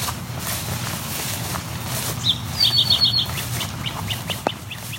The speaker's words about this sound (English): Those whips were from a great crested flycatcher.